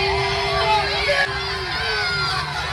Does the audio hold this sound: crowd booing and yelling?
yes